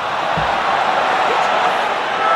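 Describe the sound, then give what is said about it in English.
A steady wash of applause runs through the whole stretch, dense and even with no pauses, with one brief low thump near the start. “There was just an extra bit of applause there for you.”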